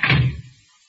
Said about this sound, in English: Close the door, quick.